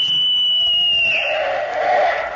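A single loud, shrill whistle blast, blown from bushes at the corner of a schoolyard at passing motorists and sounding like a police whistle, holds a steady high pitch for about a second, then breaks into a rougher, lower, breathy tail before cutting off. No voices.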